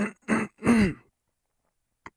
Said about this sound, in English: This cough in my throat is, I think, trying to communicate that I should not be talking at all